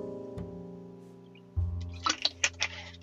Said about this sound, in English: Let me get some water. Un momento. Por favor.